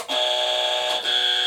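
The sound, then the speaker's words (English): A quiz buzzer is pressed and sounds twice in quick succession, a loud, bright electronic tone held steadily for about a second, then briefly restarting, with no talking. “Buzzers.”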